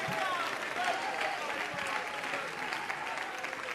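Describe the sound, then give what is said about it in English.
A large indoor crowd at a worship service claps continuously and loudly in praise of God, a dense wash of hands with scattered voices shouting and calling out over it throughout. “As he come on, every hand clapping, every voice lifted.”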